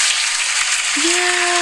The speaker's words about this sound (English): Y'all, I finished the first quarter of my senior year in 2020 at North High School, distance learning. If that don't deserve an applause, I don't know what do.